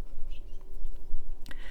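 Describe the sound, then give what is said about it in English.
Faint, scattered bird chirps over a steady low outdoor rumble on a morning outdoors, with a brief sharp rustle near the end followed by a thin, high sustained tone. “There's going to be some ambient noise, of course, separate from the birds.”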